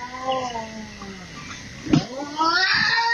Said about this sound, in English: Ooh, that just, I mean, you hear that? Yep. First of all, I think it was a cat, like a normal cat pissed off. Yeah, I wouldn't assume Bobcat.